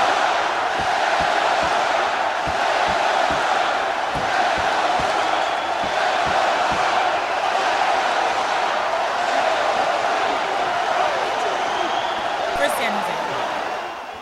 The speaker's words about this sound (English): But the chant of the home crowd is for their team. They are proud.